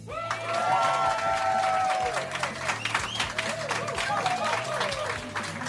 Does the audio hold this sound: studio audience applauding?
yes